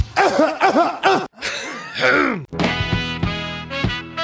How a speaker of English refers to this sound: Are you done clearing your throat? Let me clear my throat.